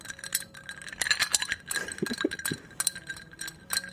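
Ice cubes clink and rattle against a glass as a Manhattan cocktail is stirred rather than shaken, a steady stream of bright, high-pitched taps with a few sharper knocks, with no talking over it.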